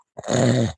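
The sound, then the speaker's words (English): A person imitates snoring with one short, rough, rattling vocal snore lasting about half a second. It is fairly loud, with no talking around it. “And I know she caught a video of us the other night in bed snoring, both of us.”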